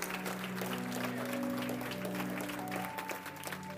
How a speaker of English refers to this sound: Come on, give the Lord a hand clap, somebody. Yeah. Woo.